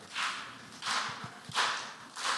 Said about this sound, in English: All right, let's end this the way that we started it. I want we're going to clap in unison. We're going to do it as a union. The back row, start with you. Do it together.